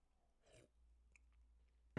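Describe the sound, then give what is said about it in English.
A brief slurping sip of water from a glass, followed by a faint swallow and a small click, then a sharp knock right at the end; no one speaks. “Let me take a sip of this water.”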